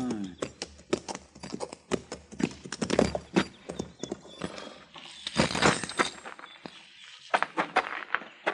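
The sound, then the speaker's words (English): Horses' hooves clip-clop steadily in a corral where a boy is feeding the horses, a run of sharp knocking steps with brief pauses. “Well, then who's that boy in the corral yonder feeding his horses?”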